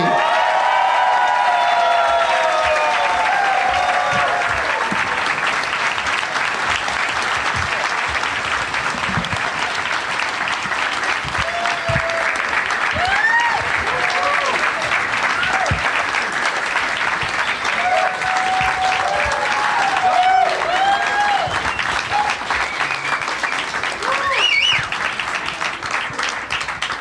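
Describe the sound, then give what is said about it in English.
Sustained audience applause as guests Geoff Tate, Emma Arnold and Nate Bargatze are welcomed out onto a show fills the whole stretch, a dense steady wash of clapping with scattered whoops and cheers rising through it, loud and unbroken from start to finish. “That was long applause. You guys really kept it going.”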